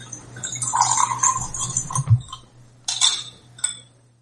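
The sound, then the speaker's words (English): A stirred, chilled drink is poured into a highball glass over ice, a steady trickle for about two seconds with light clinks of ice, followed by a few sharp glassy chinks and taps. “And we're going to pour that in a highball glass. I've put ice in to keep it chilled, because this is definitely a sipping drink.”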